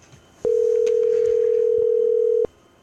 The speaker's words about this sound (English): I'm calling you. Anyway. Pick up.